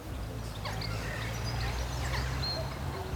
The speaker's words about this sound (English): Don't miss a single duck noise or a single bird singing.